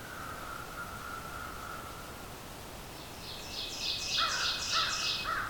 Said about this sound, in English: There's our oven bird again, and another American crow.